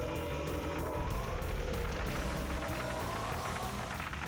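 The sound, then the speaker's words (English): A lawnmower engine drones steadily throughout, a continuous low mechanical hum and rumble that holds at an even, fairly loud level with no breaks. “And unless I'm able to edit it out, you're gonna hear some of the lawnmower behind me.”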